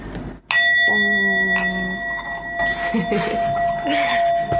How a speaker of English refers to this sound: Ready, begin with a gong? Yeah. Right. Do it.